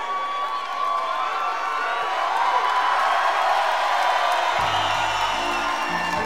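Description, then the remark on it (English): A live crowd cheers and shouts in a steady, dense roar that stays loud throughout, with whoops over the wash of noise and a low rumbling tone entering near the end. “Make some noise!”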